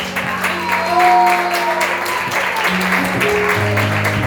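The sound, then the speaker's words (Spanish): A church audience applauds for Christ in a steady, dense wash of clapping, with sustained organ or keyboard tones and a few voices mixed in underneath. “Y vamos a dar un aplauso a Cristo.”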